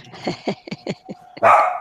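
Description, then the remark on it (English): A pet dog being shooed away barks in a quick run of about five short, sharp yaps, ending in one louder, harsher bark. No one speaks. “Shooing his dog away.”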